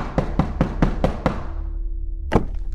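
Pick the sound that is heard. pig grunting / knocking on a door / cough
knocking on a door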